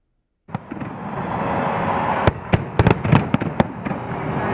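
Fireworks bang and crackle in quick succession, sharp reports popping over a dense, continuous rumble of explosions, with no voices.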